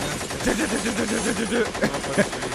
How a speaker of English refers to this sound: Ooh. Look at them gunshots going.